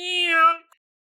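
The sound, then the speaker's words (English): A person imitates a cat's meow, one sustained, fairly loud mew lasting about half a second before trailing off, followed by a faint click and then silence. “After I made that sound effect, I took a nap.”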